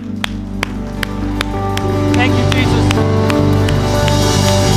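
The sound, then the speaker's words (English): A crowd stands and cheers and claps to give God a cheer after two people have responded to God, with sharp claps over a steady roar that swells louder midway, while sustained musical tones hum underneath and a voice speaks briefly. “And I think it'd be great if we could stand up and we could give God the biggest cheer.”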